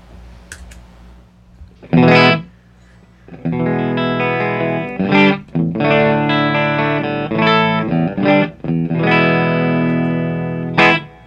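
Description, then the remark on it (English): A clean, dry, flat and neutral electric guitar tone plays a short sequence of strummed chords and ringing notes, fairly loud, with brief pauses between phrases and no talking. “We should probably demonstrate our clean tones, no?”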